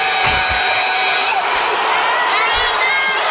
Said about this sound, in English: I love how they're booing her.